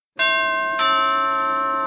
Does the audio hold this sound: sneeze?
no